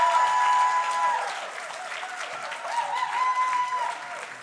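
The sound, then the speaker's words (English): At a poetry reading, an audience claps steadily for several seconds, a dense wash of hands with some high whoops and cheers rising over it, loudest at the start and swelling again near the end. “So clap for me like I'm getting up, and then I'm going to do this, and we're going to close it out, and then we'll bring up some more poets.”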